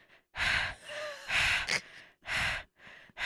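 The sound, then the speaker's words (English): Loud, heavy mouth breathing, a run of raspy in-and-out breaths in a steady, labored rhythm, as a person imitates breathing through a stuffed nose. No talking. “I couldn't breathe out my nose. My nose was so stuffed.”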